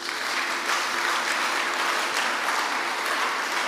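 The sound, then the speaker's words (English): Sustained audience applause, a dense steady wash of many hands clapping at an even, fairly loud level throughout, with no voices standing out. “Don't you are clapping.”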